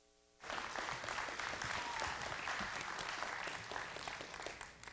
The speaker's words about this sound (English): Give Pastor John a big hand clap as he comes.